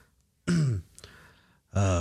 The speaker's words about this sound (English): I will kind of clear my throat.